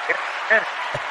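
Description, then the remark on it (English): A short burst of dense crowd applause and clapping fills the moment, steady and fairly loud, with a brief voice cutting through partway and a low thump near the end. “But when you make $1 million a year, you could do that type of stuff. Round of applause.”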